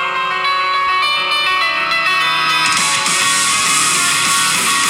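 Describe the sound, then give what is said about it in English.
A bright, fast piano line rings out in an upbeat anime theme song played from a phone held up to a microphone, loud and steady, with the arrangement swelling fuller and brighter about halfway through. No one speaks over it. “Like the that piano shit rocking. Piano go crazy.”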